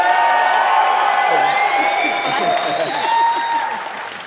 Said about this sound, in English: So if you believe that it's for team payments, give me a round of applause. If you think it's for team forecasting, give us a round of applause.